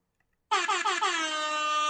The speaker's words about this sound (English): Give me that air horn. Give me more air horn. I need more air horn.